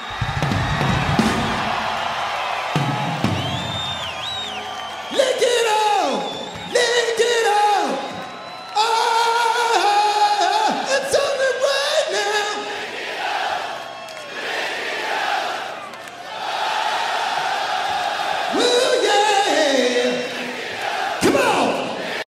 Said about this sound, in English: Want y'all to help us with this one? Goes like this. Now you gotta sing. This is like the smallest crowd we played for. Doesn't mean you can't be the loudest.